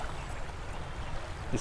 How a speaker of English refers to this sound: Well, I've never seen the Severn Bore before. That's a... It is pretty impressive, isn't it?